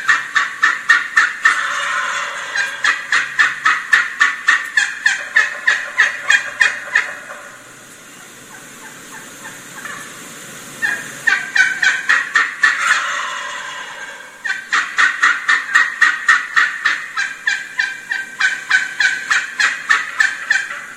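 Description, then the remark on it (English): A hen turkey yelps in fast, rhythmic series of loud, raspy notes, falls silent while a gobbler's rolling gobble sounds in the middle, then resumes her steady yelping. “Notice how she stops every time that gobbler gobbles.”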